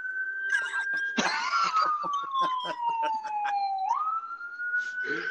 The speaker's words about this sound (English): That's just an ambulance.